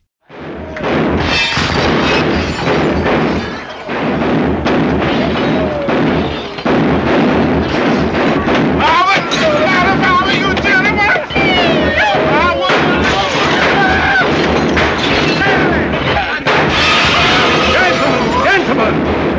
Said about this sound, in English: Then one of them starts firing rifles inside of the train, thinking they are on a hunting trip already.